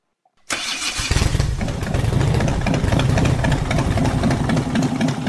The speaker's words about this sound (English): Now, would you listen to that? Don't you love it? My baby, a big Harley Davidson Screamin' Eagle convertible CVO. I just love hearing it. It sounds like freedom, speed, the open road.